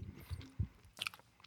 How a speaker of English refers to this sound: After I finish chewing this Skittle.